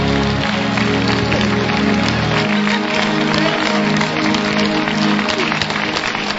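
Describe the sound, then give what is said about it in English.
A crowd claps steadily, a dense patter of many hands with a murmur of voices underneath, loud and continuous throughout. “Look at how you are clapping like an ambassador.”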